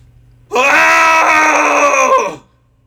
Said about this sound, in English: But yeah, let's find a place to scream with us and go ahead and let's do a cathartic scream, baby. Here we go. In 3, 2, 1.